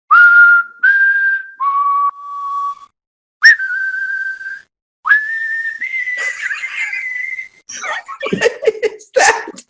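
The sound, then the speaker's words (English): A person whistles a melodic spaghetti western film theme in long sustained notes with short pauses, fairly loud, ending in a burst of laughter and breathy noise. “How about, instead of singing, I whistle.”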